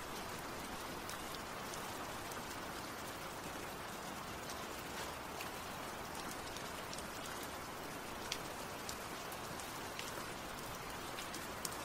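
rain

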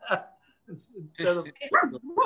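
pug dog barking

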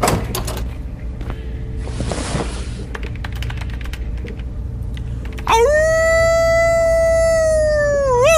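wolf howl sound effect

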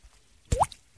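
water dripping

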